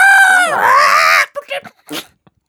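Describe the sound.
A person gives one loud, squawking seagull imitation lasting about a second, its pitch dipping and then rising, followed by a few brief murmurs or laughs.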